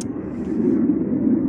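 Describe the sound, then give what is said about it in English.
A heavy, continuous roar of jet planes passing overhead, loud and steady throughout with a deep rumbling low end and no voices. “This is a continuation of my audio journal for day 93, because I've been disrupted by this huge blast of noise coming from jet planes.”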